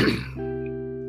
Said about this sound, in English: Let me clear my throat.